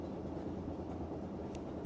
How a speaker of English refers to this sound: I will just let this ambient train noise record for a minute so I can overdub it later.